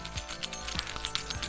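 Keys on a keychain, tossed to someone, jingle and clink: a quick cluster of bright metallic taps scattered irregularly over a second or so, with no voices.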